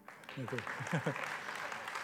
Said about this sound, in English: The finances of that little group tripled the month that I quit my job and we started giving to missions. You were supposed to clap.